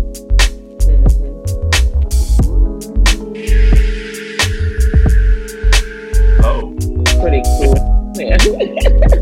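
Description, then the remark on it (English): Dry ice hissing in hot water, used instead of a fog machine for Halloween: a steady, airy hiss swells for about four seconds, riding over a loud, low, throbbing rumble that pulses irregularly throughout. “You just get some dry ice and some hot water.”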